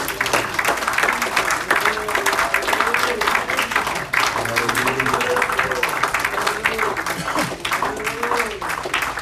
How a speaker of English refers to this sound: So give the Lord a hand clap this evening.